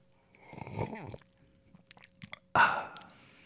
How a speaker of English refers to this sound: Let the viewers hear you take a sip